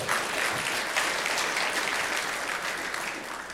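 An audience claps their hands together in sustained, dense applause, many overlapping claps forming a steady wash of sound at a fairly even level for a few seconds.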